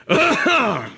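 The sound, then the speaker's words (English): A voice imitates a man's loud, showy, rip-roaring cough: a throaty, groaning burst that breaks into a second drawn-out heave, lasting under a second with no other sounds. “And right when it got to that second, I'm telling you, there was this guy 20 feet that just let out this rip-roaring cough, okay?”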